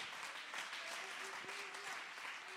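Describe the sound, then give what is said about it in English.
A crowd claps hands steadily, a dense wash of many overlapping claps filling the space at moderate volume, with a faint sustained tone underneath. “Somebody clap your hands and magnify the Lord.”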